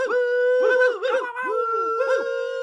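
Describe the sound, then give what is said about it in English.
A few voices hoot and woo together, their pitches swooping up and down in overlapping bursts over a sustained tone, loud, like an enthusiastic crowd cheering. “You may hoot or woo.”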